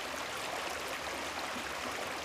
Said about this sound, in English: Tonight's meditation will have the creek in the background, and it'll go on for a while after it's over.